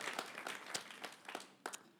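round of applause

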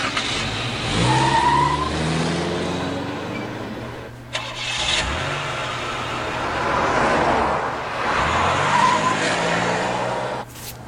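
car driving and accelerating

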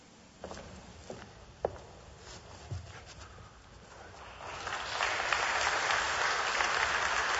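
audience clapping

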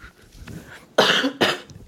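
cough

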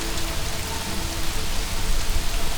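heavy rain pouring down

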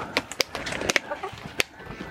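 chickens clucking

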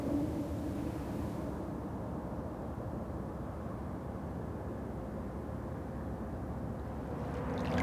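river water flowing

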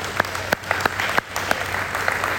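round of applause

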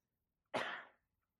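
cough

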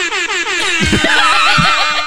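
air horn sound effect

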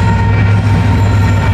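train passing by

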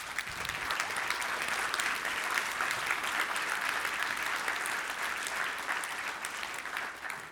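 audience cheering and applauding

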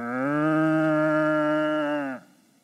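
cow mooing

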